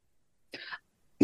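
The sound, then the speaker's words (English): Two dry coughs: a short raspy one followed after a brief pause by a louder, sharper cough that cuts off abruptly, with silence around them and no talking. “Sorry, now I'm coughing.”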